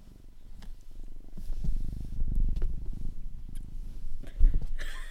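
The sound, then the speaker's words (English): A pet cat named Bobby purrs loudly right on the microphone, a steady low rumbling with rhythmic pulses of breath, continuing for several seconds with no talking. “Let's intro with his purrs. Because he's so loud.”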